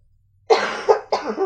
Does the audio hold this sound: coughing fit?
yes